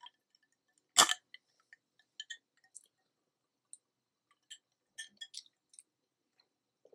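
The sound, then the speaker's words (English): One sharp clank of glass drinking glasses knocked together in a toast, dull and oddly wet rather than ringing, followed by a scatter of faint little clicks and drippy liquid sounds. No one speaks. “Why do they make such a wet plastic sound when they clank?”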